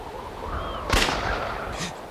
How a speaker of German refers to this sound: Ein Schuss.